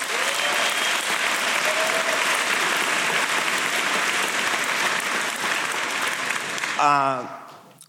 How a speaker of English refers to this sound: A big applause line in the keynote, not quite as big as dark mode, but maybe second, was the announcement that CarPlay is expanding to allow third-party navigation apps.